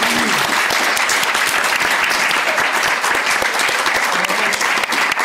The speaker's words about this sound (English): let's give a round of applause for Leon Bell down the back